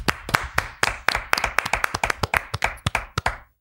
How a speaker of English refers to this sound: And that would be … and …. Can we just give them a quick round of applause?